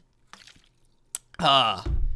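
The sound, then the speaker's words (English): Someone takes a few quiet sips of water, a small click, then lets out a loud, satisfied voiced "ahh", ending in a low rumble. “Hold on, let me get hydrated.”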